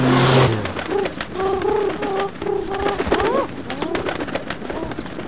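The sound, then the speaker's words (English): Several pigeons coo in overlapping, warbling calls while a flurry of wing flaps and clatter rises around them, following a short loud burst of noise at the start. “Hawks, I thought we'd never be rid of those unshiny wing draggers.”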